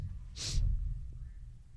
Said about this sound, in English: Yeah, I'm stuffy, so I apologize for the sounding all nasally and for sniffing at y'all. I'm so sorry.